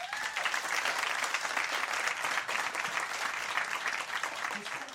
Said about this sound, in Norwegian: Dere må gi en stor applaus, forfatteren